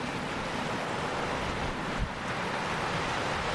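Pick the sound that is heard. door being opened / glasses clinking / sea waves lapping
sea waves lapping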